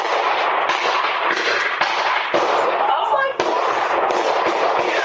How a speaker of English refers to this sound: A Ring camera captured the chilling sound of gunfire and two bystanders fleeing for their lives.